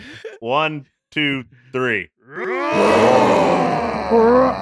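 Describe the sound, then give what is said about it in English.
Voices imitate lion roars: three short, separate growling roars, then several people roar together in a loud, overlapping, messy chorus that holds for about two seconds. “How about we all do it at the same time?”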